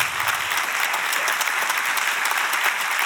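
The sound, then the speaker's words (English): Many people in a church audience clap their hands together in a steady, dense burst of applause that holds at an even, fairly loud level for a few seconds, with no voices standing out. “Clap your hands.”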